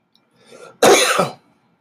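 A single harsh cough, preceded by a soft throaty breath and ending quickly in silence, with no talking.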